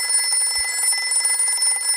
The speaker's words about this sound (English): The phone rings. What can it mean? Action? Horror? Mystery? Danger? Intrigue?